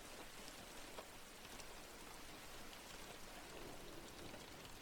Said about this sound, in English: Slowly, we can open up our ears to the sound of rain.